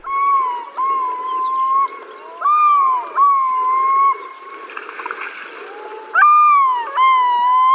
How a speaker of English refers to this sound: We're hearing a yellow-billed loon calling on Alaska's North Slope.